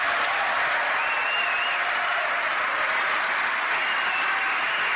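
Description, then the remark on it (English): Sustained applause from Republicans in a large audience while Democrats sit, a dense steady roar of clapping hands that holds at an even, loud level for the whole stretch with no voices standing out. “Those are Republicans that are applauding, not Democrats.”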